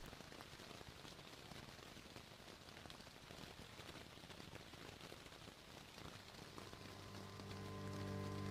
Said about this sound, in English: The rain on their hats like the sound of a Wikipedia page being frantically rewritten.